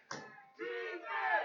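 A sparse crowd at a football game in North Brunswick chants "defense" in two drawn-out syllables, voices blended and moderately loud, echoing.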